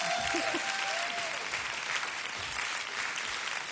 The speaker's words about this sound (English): Hey, I give those guys a round of applause.